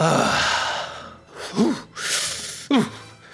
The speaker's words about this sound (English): the hot babe suplexes James Bond and they go smashing through the wall back to James Bond's room, where they are lying in bed, panting in a way that suggests they both just came so hard that they will need physical therapy.